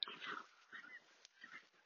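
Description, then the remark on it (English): Two dogs yelp and whine excitedly in a few short, high-pitched bursts, heard faintly outdoors as they chase half a dozen deer running across a pasture, with brief pauses between the cries. “Half a dozen deer running out across the pasture and two dogs who think that they're going to catch them.”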